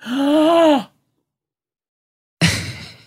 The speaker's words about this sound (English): She's really breathing in.